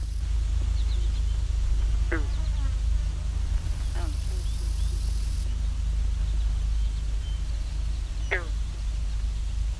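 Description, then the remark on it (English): A lone female wood duck on a pond gives three brief, rising squeal-like calls spaced a few seconds apart, fairly faint against a steady low rumble of wind or background noise. “Just a lone female wood duck here in the pond.”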